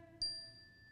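A single prayer chime is struck once at a chapel service to call young children to prayer, ringing out with a clear, bright tone that slowly fades, heard alone and fairly quiet with no talking.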